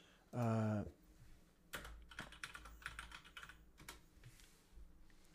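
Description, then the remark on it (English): A short, loud electronic tone sounds first, then a run of quick, uneven clicks as someone types on a computer keyboard, pausing briefly before continuing. “Hey, I know my keyboard typing is a little bit loud right now.”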